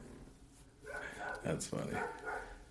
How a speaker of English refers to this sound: One thing I hate about this recording in this undisclosed location is the fucking dogs.